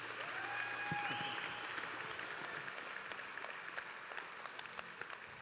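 A crowd applauds steadily for several seconds, a dense wash of many hands clapping at once, with a brief high whistle near the start.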